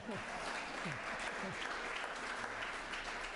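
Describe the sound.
A crowd breaks into steady, sustained applause, a dense wash of many hands clapping at an even loudness throughout, with a few faint voices mixed in.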